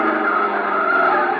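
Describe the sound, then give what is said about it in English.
A car's tires squeal loudly in one long, steady screech as it swerves back onto the road to catch a truck, the harsh whine holding strong from start to finish with no voices. “Now we will turn back onto the road and catch the truck.”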